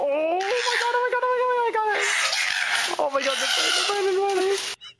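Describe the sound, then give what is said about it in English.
Loud koala screams during a fight, harsh wailing cries with a strong tonal, bleating quality, wavering up and down in pitch in a nearly continuous run of about four seconds with only brief breaks. “But this is what koala screams sound like.”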